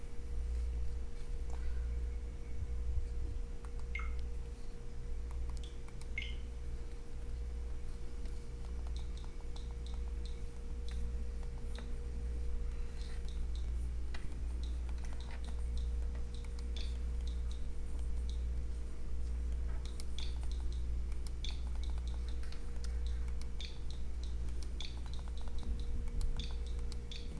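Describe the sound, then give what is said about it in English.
Soft, short clicks from a game console's on-screen keyboard tick out at an irregular pace as the Wi-Fi password is entered during console setup, over a steady low electrical hum, with no one speaking. “Is that the keyboard? It is.”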